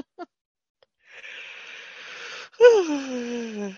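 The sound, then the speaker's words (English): A single yawn: a long, breathy drawn-in breath, then a voiced groan that slides downward in pitch and trails off, with no talking around it. “Oh, sorry about that. A little yawn at the beginning.”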